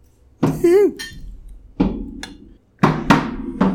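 Shot glasses of Kentucky Tavern whiskey clink together in a toast, followed by a few more sharp glassy knocks spaced unevenly over several seconds, clear, with a brief vocal exclamation near the start.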